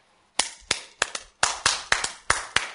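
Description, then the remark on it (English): Sharp hand claps ring out one after another in a steady, slightly uneven rhythm, about nine crisp claps with no talking. “I can clap like a robot man.”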